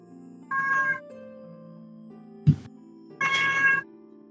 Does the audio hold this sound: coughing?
no